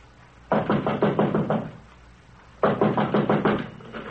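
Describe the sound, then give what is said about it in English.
Two bursts of quick, firm knocking on the locked wooden door of Mr. Ackroyd's study, each about eight or nine raps in rapid rhythm, separated by a short pause. It's fairly loud, with no voices. “Door's locked.”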